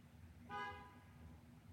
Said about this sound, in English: Wow, that fucking car horn agreed with me.